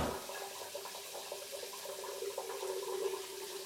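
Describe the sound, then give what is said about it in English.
A steady, continuous rush of running water, like a shower spraying, holding an even level throughout with no voices or other sounds. “By the time I came to, the water was running cold.”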